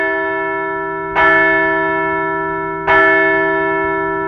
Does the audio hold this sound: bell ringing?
yes